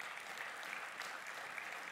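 An audience claps their hands together in praise of the Lord, a dense, sustained burst of applause, steady and full throughout with no voices standing out.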